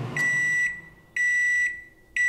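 Three evenly spaced electronic beeps from a microwave oven, each about half a second long, steady and clear at close range with no talking.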